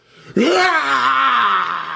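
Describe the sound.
A person imitates a lion's roar with a loud, sustained, throaty vocal growl that starts abruptly after a brief quiet moment, its pitch rising then slowly sinking over about a second and a half.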